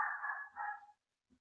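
A dog barks twice in quick succession, fairly loud, each bark drawn out and somewhat yelping, followed by a faint soft thump and then quiet.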